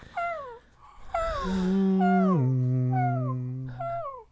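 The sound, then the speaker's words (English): A deep, loud foghorn drones for about two seconds and drops to a lower pitch partway through. Shorter high, downward-sliding whistling calls repeat over it and around it. “So, and a foghorn? Okay. Yeah, there's a foghorn.”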